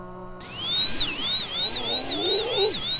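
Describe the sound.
A voice mimics a high-pitched power drill, a steady piercing whine that wavers rhythmically in pitch for about two and a half seconds, loud.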